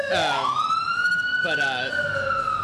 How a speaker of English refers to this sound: we got another siren going on here in the background.